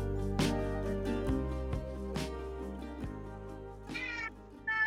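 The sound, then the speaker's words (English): A cat meows repeatedly, a series of drawn-out, wavering cries with a longer rising yowl near the end, heard over a steady tonal background. “Whose cat's meowing back there?”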